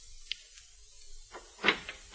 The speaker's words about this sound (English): went back up to his room, 672. A knock on the door produced results.